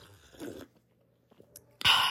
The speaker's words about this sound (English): Hold on, let me take a quick sip of tea. My tea is a little cool.